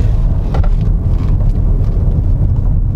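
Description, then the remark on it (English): A car with a 3-litre turbo engine and an automatic gearbox drives on Millbrook's Alpine course, with a steady, deep engine rumble that holds constant for a few seconds, overlaid with faint rushing wind noise and no voices. “And with a 3-litre turbo engine, you should really expect that it's going to be able to lift like this.”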